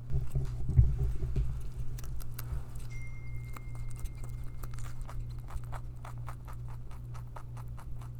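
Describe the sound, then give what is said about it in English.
Rapid, crisp crunching and nibbling of a pet named Bandit chewing lettuce, recorded as ASMR: a steady run of short clicky bites over a low constant hum, with no talking. “You have a little bit of Bandit chewing lettuce ASMR.”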